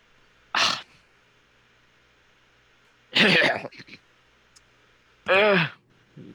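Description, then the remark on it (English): Three separate bursts of coughing spaced a couple of seconds apart, loud and close, the last one rough and voiced, like someone hacking theatrically, with a brief softer splutter between. “start coughing, and you take 5 poison damage.”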